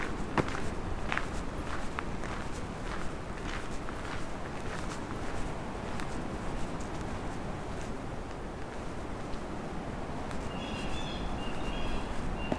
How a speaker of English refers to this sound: There's a couple of blue jays.